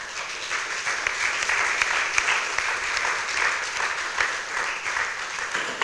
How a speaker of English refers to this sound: That is the end of our testimonies. Just a round of applause for all of those. They were great.